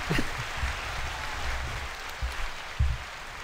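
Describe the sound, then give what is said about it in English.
A steady wash of applause for a guest being welcomed on a show runs throughout, a dense crackle of many hands clapping at moderate loudness, with a few low thumps breaking through now and then. “Let's do some hand claps”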